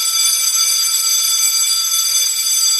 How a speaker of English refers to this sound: Do you like my bell sound effect?